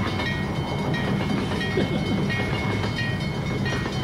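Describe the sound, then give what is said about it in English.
A train rolls steadily along the railway line, a continuous loud rumble of wheels and carriages with faint metallic whine above it, unchanging throughout and with no voices. “Yeah, seems like he's still stuck in that bloody train line.”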